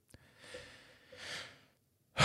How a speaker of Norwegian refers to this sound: Nå glemte jeg å puste. Jeg må bare puste litt.